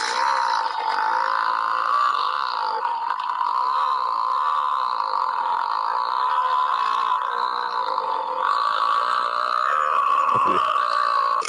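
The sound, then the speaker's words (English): A single drawn-out burp rumbles on continuously for over ten seconds, loud, with a warbling, throaty tone and no talking. “They weren't kidding when they labeled that long burp.”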